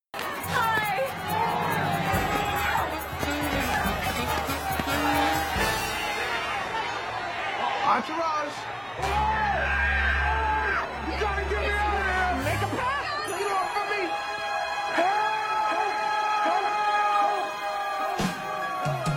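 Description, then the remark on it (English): A dense, loud crowd of protesters roars and shouts continuously while pelting everyone with food and garbage, voices overlapping into a chaotic din, with occasional sharp bangs and thuds cutting through the steady clamor. “you could just cut out that whole scene and just cut right to the end scene here of the protesters pelting everyone with food and garbage.”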